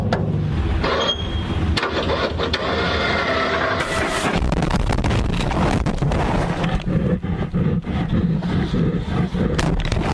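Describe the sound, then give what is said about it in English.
A bear, released into the wild when a door is opened, charges and attacks the camera, with loud, rough roaring and growling that runs almost nonstop for about ten seconds, broken by sharp thumps and scuffling bangs. “So if you've ever wondered what it would sound like to be in the wild and be attacked by a wild bear, take a listen.”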